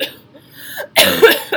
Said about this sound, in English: Dude, can you stop coughing